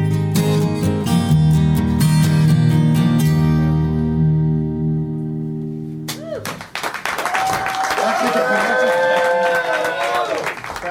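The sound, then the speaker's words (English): A band's final sustained chord rings out and fades, then a concert crowd erupts into loud, steady applause and cheering, with a few high whoops rising above the clapping. “Crowd noise, applause.”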